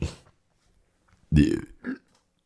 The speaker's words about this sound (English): I apologize. I'm having some hungry burps.